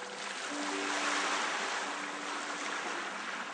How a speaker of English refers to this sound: The waves roll towards you across the glittery sand, still squishy and warm between your toes.